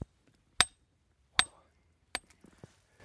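A rock hammer strikes solid rock that has no deformation or rust three times at a steady pace, each blow a sharp, ringing clink as the hammer bounces back, followed by a few lighter taps and scrapes.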